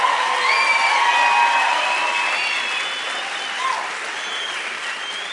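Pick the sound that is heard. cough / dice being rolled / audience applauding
audience applauding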